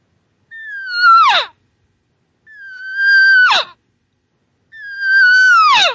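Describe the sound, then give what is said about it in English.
Three loud, plaintive regathering mew calls from a cow elk looking for elk that are not responding back to the group, each a high, steady wavering tone that drops sharply at the end, spaced evenly with silence between them and no talking. “Here's the sound cows make when they're looking for these elk that are not responding back to the group like they were just minutes ago.”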